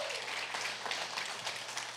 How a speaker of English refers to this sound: Can we give all of our first-time guests a round of applause? Thank you guys for being here.